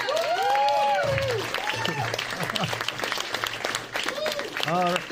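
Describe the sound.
Loud, close clapping mixed with fleshy belly slaps, a steady patter under excited voices calling out and cheering throughout.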